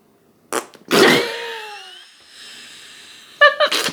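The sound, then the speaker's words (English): A person blows a wet, sputtering raspberry with the mouth, mimicking a fart in a loud burst of about a second, followed by a quieter hiss and brief laughter-like sounds at the end. “Do your fart mouth.”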